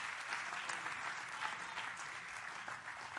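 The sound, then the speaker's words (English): A standing audience claps hands to the Lord in a sustained, dense burst of applause, steady and fairly loud throughout, with a broad wash of overlapping claps and no distinct talking. “Stand to your feet with me right now and clap your hands to the Lord.”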